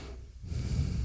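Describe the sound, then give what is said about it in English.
A deep, forceful sniff drawn in through the nose, a breathy rush that swells after a brief quiet moment and holds for about half a second, with no talking. “Oh, you're breathing beautifully.”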